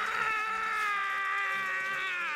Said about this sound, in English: So she puts it in his mouth. He screams like, really kind of weirdly. Right. Cue scream right here.